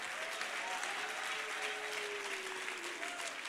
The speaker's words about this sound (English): Do you believe it? Clap your hands and shout unto the Lord.